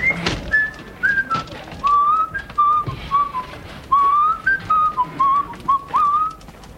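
A person whistles a wandering melody of short and sustained notes, clear, with faint background noise and no talking; it is the same tune another person whistled.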